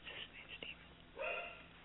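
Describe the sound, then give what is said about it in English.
A dog barks faintly in the background, one short yelping burst after a brief stretch of quiet sounds, with a voice murmuring. “The barking dog there in the background.”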